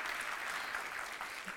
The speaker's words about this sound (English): Hallelujah. Hallelujah. I'll clap again. Thank you, Lord.